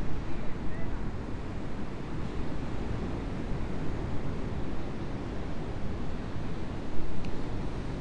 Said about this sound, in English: Except that as soon as I say that, I realize that the sea has many surfers in it. I'm going to turn myself so I can watch them.